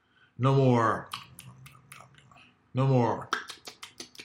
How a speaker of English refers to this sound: Speaking of breaks, are you tired of chewing your own food? disgusted with the thought of mindlessly chomping on everyday generic foodstuffs?